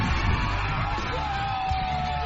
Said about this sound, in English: We would come out here, the lights would be on, the whole stadium would just be completely full and the crowd would be roaring, and it was just a very euphoric, unbelievable high. The Friday night games were the biggest rush I've ever had in my life.